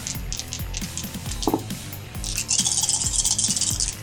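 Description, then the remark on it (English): A handful of dice clatter and rattle across a hard tabletop, a busy cascade of small clicks that builds into a dense, bright rattling burst before settling. “That's a lot of dice.”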